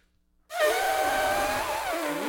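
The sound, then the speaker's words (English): A person imitates an elephant's trumpet: after a brief silence comes one loud, brassy, wavering blare that holds for nearly two seconds, its pitch bending slightly before trailing off. “Pretty good elephant, right?”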